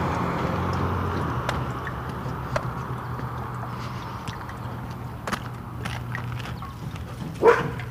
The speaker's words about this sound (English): Oh, that's a loose dog. Well, that's not good.